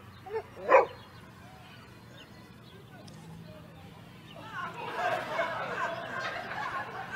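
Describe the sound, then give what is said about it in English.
A dog gives two quick barks right at the start, then falls quiet while a low murmur of background voices and noise builds up. “Look at the cute dog.”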